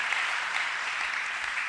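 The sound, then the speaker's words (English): An audience clapping together for the ministrations received, a dense, steady wash of many hands with no gaps or pauses, fairly loud and even throughout, with no voices heard over it. “Clap for all the powerful ministrations we have received.”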